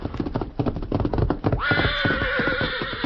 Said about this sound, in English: Meantime, having returned to camp, the Lone Ranger and Tonto were preparing supper when Dan's horse, Victor, galloped in and stopped.